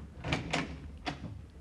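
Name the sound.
closet door opening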